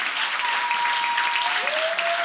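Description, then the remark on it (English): An audience claps and shouts during a sermon, clapping steadily in a dense, continuous wash of applause, with a faint sustained tone, like a held shout or organ note, running through it. “Shout like you have a broken spirit. Clap like you have a broken spirit.”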